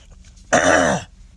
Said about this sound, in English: But you know I always clear my throat. Uh-oh, one more. Sorry to be all grossed out, everyone, but I promise that'll be the last one.